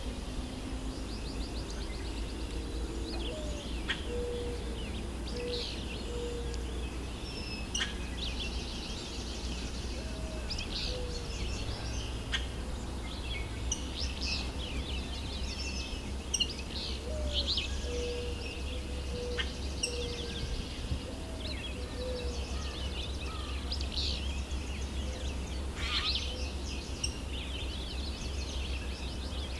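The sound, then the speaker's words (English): Yellow warbler song with scattered high chirps and short trilled phrases repeating throughout, over a constant low rumble of outdoor background noise. “And of course, there's always going to be slight variation in each instance.”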